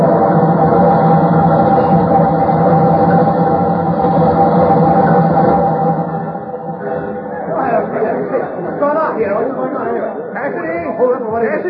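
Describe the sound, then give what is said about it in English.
A steam train rumbles loudly past with a steady, droning roar for about six seconds as it is switched off the main track onto a siding, then cuts away as people begin talking. “Switch, California, but wait till it's too late for the engineer to stop on the main track.”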